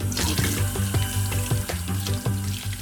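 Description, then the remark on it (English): A bathroom faucet runs steadily, water splashing into a sink for a few seconds while a rhythmic musical backing with a pulsing low beat plays underneath. “And my bathroom faucet cannot make me clean, since it only brings me lukewarm gasoline.”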